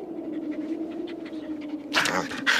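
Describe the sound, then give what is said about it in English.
A dog pants in quick, rhythmic breaths over a steady low hum, the panting swelling louder in the final second with a couple of heavy, breathy gasps. “Maybe we should let the dog in.”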